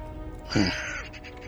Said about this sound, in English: Outside, you see the raven. It caws a couple more times and then flies away, seemingly annoyed.